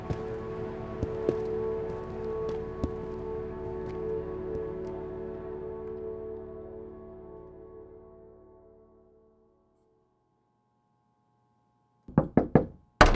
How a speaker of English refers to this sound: Knock, knock.